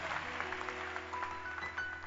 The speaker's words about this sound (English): Clap your hands for Jesus if you believe it.